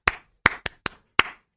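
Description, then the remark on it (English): Five sharp handclaps from a person clapping for themselves, in an uneven rhythm, two pairs close together and a final single clap, each crisp and bright with a short decay, with no voices. “Okay, so clap for yourself.”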